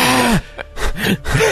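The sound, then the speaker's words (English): Heavy, voiced breathing from a man jogging along a cement path by the Potomac River, a rapid run of strained gasps and exhales, with dull low thumps of his footfalls between breaths. “We hear, I have it written right here, we hear his heavy breathing and footfalls as he passes the camera.”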